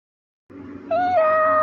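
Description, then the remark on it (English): A person imitates a cat's meow: one drawn-out, fairly loud meow that rises and then holds steady, preceded by a brief low rustle after a moment of silence. “But let's listen to some of these meows.”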